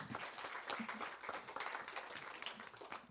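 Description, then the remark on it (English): An audience at an event bursts into steady applause for Roxy's, the venue and food sponsor, many hands clapping at once in a dense, sustained patter that stays fairly even in loudness for the whole few seconds. “Let's have a round of applause for Roxy's.”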